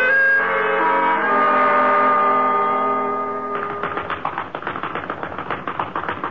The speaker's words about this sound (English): Why don't you give that punching bag a rest? It's getting tired.